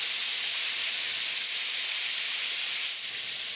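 Chicken frying in hot oil, in for about 14 minutes so far, a steady, dense sizzling hiss that stays even and fairly loud for the whole stretch, with no voices over it.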